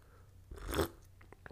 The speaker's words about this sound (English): Take a sip of my tea.